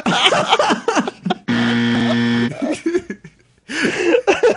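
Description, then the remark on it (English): A single loud, flat game show buzzer blares for about a second, a harsh steady drone between stretches of lively talk and laughter. “Buzzer.”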